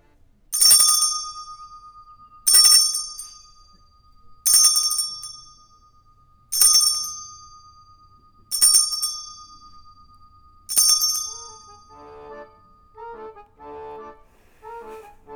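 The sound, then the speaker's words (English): A bright metallic chime bell is struck six times at an even pace by a player taking a turn in a game, each ring decaying before the next, followed by faint, softer tones near the end; fairly loud with no speech. “So, as player number one, I'm up with the chime this month.”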